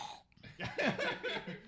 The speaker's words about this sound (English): Ooh. That burp was not okay.